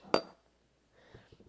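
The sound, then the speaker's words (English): A sharp glassy clink as two mason jars used as drinking glasses knock together in a toast, ringing briefly, followed a moment later by softer faint clatter and light taps. “These mason jars are cute.”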